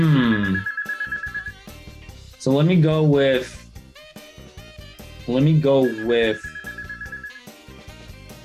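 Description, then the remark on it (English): A mobile phone ringtone plays in repeated electronic bursts with steady high beeping tones, fairly loud, while a man talks over it. “And more noise. Mind you, my phone,”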